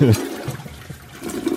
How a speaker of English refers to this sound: Dude, I'm going to need a double toilet flush on this one, man.